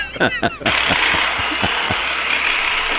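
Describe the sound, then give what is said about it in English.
A few short voiced sounds, then an electric toothbrush abruptly starts up with a steady, hissy buzz that holds at an even loudness to the end. “you can explain real quickly what's going on with the toothbrush there? It's electric.”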